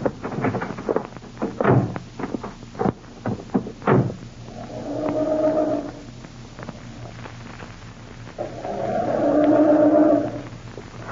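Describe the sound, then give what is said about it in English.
A few sharp thuds and knocks, then a car engine cranks in two long, whining bursts of two to three seconds each, churning steadily but never catching or starting; the car, taken from a garage, has its distributor cap missing. “I'm starting this. I'm afraid it won't go.”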